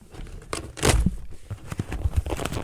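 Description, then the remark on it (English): Packing tape is torn by hand, without scissors, off a big, thick, stapled Eddie Motorsport cardboard box. A loud rip is followed by scattered crinkling and scraping as the box is pulled open. “I don't have scissors to open up the packing tape.”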